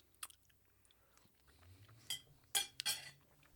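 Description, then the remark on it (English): Spoons clink together a few times, bright metallic taps with a short ring, one early and a cluster of three near the end, over quiet low background noise. “Grab your spoon.”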